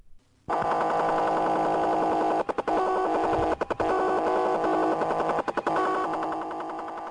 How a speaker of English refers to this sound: Now, you know what that is, right? It sounds like really fast Morse code. Yeah, it's teletype. And somebody's broadcasting this like constantly. What does it say? Do they know? Nobody knows. Nobody can decipher it.